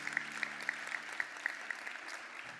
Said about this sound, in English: Come on, let's give Jesus a round of applause.